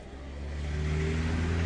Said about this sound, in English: Now I'm standing by Wellington's Basin Reserve during the morning rush hour. In front of me are cars and buses full of commuters.